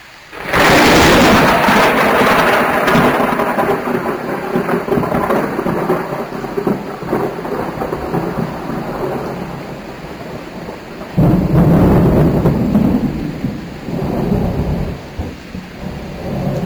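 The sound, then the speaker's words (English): A loud thunderclap cracks open and rolls into a long, heavy rumble over steady rain, then a second powerful boom surges up before fading back into the downpour, during a rain shower at Summerfest, recorded on an iRiver. “But making rain aid from the situation, I got out my iRiver and felt like I had actually validated the experience of having to stand out there when I got this particular thunderclap.”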